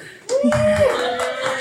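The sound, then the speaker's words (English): After a brief quiet moment, a crowd breaks into dense, sustained applause for themselves as a thank-you and welcome, with a high whistle or cheer rising over the clapping. “So applause for yourself.”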